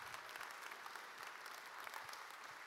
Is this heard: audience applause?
yes